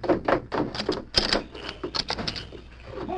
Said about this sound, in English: Unbolt the back door, quick.